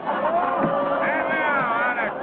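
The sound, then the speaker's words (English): A steady murmur of a rodeo crowd, many voices blending into an even, unbroken babble with a few rising and falling tones poking through, holding level for a couple of seconds. “With another cowboy standing by, he watches the steer and the crowd.”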